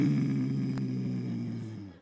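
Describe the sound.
A person imitates a young boy's growl, making a low, rumbling voiced sound that holds steady for about two seconds, fairly loud, then trails off at the end.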